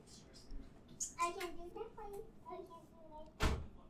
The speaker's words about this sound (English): Close the door, please. Okay. Close the door all the way.